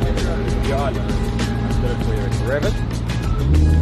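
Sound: sports car engine revving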